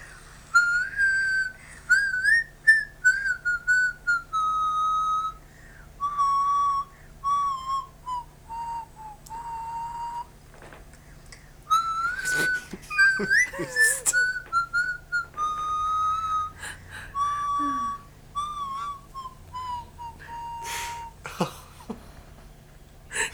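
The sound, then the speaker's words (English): Someone whistles a song melody while walking around, a wavering, slightly breathy tune carried in phrases over about twenty seconds, broken by brief gaps and sharp breathy bursts, with no one talking. “knew what song I was whistling as I was walking around, and I recorded this when he was away, and so I played it for him”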